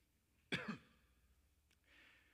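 One short, put-on cough made of two quick harsh bursts, then quiet background noise with a faint click and a soft hiss afterward.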